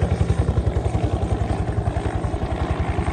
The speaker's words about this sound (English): Red helicopter is coming in now, and he's coming down right here into the car park.